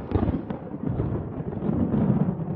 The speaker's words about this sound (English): As he went out, there was a clap of thunder